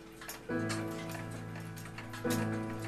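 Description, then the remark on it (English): Several mechanical clocks tick steadily in a clock repair workshop, while two sustained ringing tones swell in, one after the other, and hang over the ticking. No one speaks. “These clocks are your friends.”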